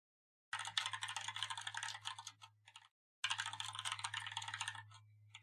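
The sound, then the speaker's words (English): A woman types rapidly on a computer keyboard in two bursts separated by a brief pause, the clicks dense, with a low steady hum running beneath each burst; no one speaks. “What are you typing, ma'am?”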